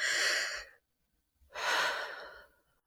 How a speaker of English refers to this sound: Paced breathing's good for that. You breathe in deep.